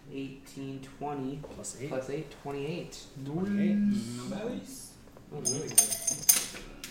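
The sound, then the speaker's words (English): Eight four-sided dice clatter in a quick, bright rattle of small clicks near the end, following several seconds of people talking over the table during a tabletop game roll. “These dice.”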